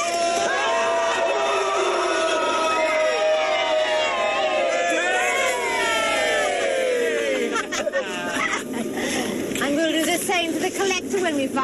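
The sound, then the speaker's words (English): On screen, a loud crowd cheers and shouts continuously as a man is tossed off a building and falls to his death, many voices yelling and whooping together in a dense, rising roar that stays strong for the whole stretch. “They are cheering as he falls to his death.”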